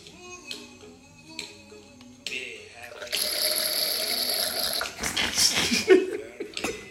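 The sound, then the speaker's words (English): Experimental Cabernet Sauvignon with Tempranillo wine, from an Italian winemaker on the Murray River, poured through an aerator makes a loud, steady airy hiss for about two seconds, then breaks into sputtering gurgles. Voices and a little laughter come before it. “And I'm grateful for the sound that it makes when it goes through the aerator.”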